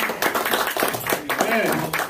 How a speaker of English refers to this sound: Praise God. Let's get the Lord a hand clap. Of praise. Amen.